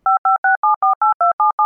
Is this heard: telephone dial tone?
yes